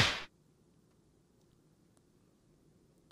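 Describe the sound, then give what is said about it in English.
A single loud, sharp slap sound effect rings out at the very start, a brief burst that cuts off quickly and leaves near silence with faint background hiss. “had to do that slap for Shea Sharp.”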